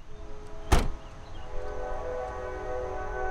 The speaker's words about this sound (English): Yeah, there's a train right next to it